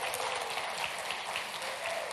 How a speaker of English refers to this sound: Weren't our kids just wonderful? Hey, they were awesome. I think they deserve another round of applause.